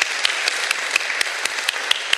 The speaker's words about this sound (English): a round of applause here.